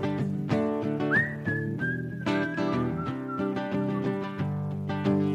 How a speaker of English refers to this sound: Na na na na na na. That's what you do when you can't play a guitar solo. You go na na na na na and whistle.